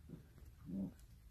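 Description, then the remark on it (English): A dog growls low and faint in the background at the speaker, with a brief rumble near the start and a longer, slightly louder growl shortly after, no voices present. “And you're probably going to hear my dog in the background growling at me.”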